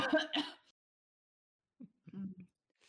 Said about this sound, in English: Cough.